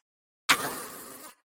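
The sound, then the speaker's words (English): A person imitates an open-mouthed burp: one loud, raspy, gravelly belch that starts abruptly, holds for nearly a second and then cuts off, with no other talking. “Also, why do people have to have their mouth open when they burp?”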